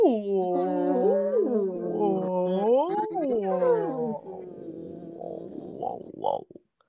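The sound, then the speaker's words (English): A person imitates whale song with long, wavering vocal moans that swoop up and down in pitch, then trails off into lower, breathier groans and short rising calls. “This has happened before, but this time I definitely had some like whale motions happening when I was making whale noises.”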